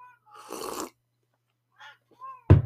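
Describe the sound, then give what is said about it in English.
A domestic cat makes a few short, scattered vocal sounds, with a breathy, noisy burst early on and an abrupt loud noise at the very end. No talking. “My cat is harassing me right now.”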